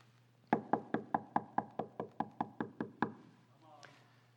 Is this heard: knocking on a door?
yes